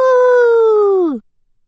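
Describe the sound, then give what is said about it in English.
A single wolf howl, loud, holding one steady note for about a second before bending downward and cutting off, with silence after. “The earth is full tonight, tonight, and the wolves all howl. Howl!”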